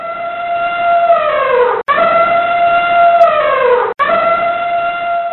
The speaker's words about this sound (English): Do you know what that one was? It was an elephant!